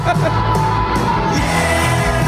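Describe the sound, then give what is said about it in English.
A large concert crowd roars steadily, a dense wash of cheering with scattered yells and whoops rising out of it, loud and continuous throughout. “So check out the this crowd. This doesn't sound that bad.”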